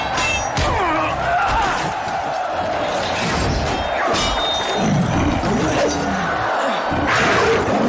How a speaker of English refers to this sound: And there's some cool sound effects here with the dragon's vocalizations, kind of dog-like, kind of beast-like, pretty cool stuff.